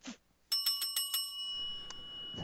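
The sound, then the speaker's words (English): A bell is struck rapidly about five times, bright, then its metallic tone keeps ringing out and slowly fades, with a brief vocal sound just before. “This is both like, and thank you for the pause so I could get to the bell.”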